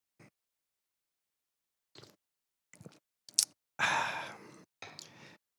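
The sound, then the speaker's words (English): A few short, quiet sips of coffee followed by a louder, drawn-out airy slurp and a final breathy gulp, with near silence between the sounds and no talking. “So that's for all the broadcast professionals, which I am not one, as I drank and slurped my coffee.”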